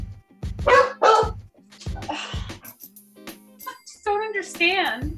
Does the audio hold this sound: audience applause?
no